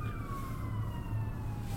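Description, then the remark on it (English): An emergency vehicle siren sounds outside, its steady wail gliding slowly downward in pitch as it passes by, over a low rumble of traffic, with no one talking. “I've had lots of sirens in the background.”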